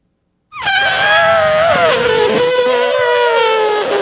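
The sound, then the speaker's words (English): A person's voice imitates an elephant trumpeting: one loud, sustained, brassy blare lasting about three and a half seconds, starting abruptly and wavering slightly in pitch as it holds. “Shall I make my elephant sound?”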